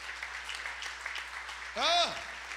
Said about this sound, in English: Everybody stand with me. Can you stand and clap your hands one more time?